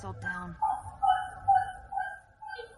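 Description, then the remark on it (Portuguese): A street dog barks in a quick steady series, about five short, fairly high-pitched barks roughly half a second apart, clear. “Cachorro da rua.”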